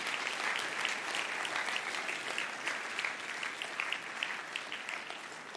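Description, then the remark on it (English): Steady applause from a sizable audience at a church service, many hands clapping in a dense, continuous wash that holds at an even level for several seconds with no voices standing out, for people standing up to come back to Jesus. “Let's give those guys a clap for standing up.”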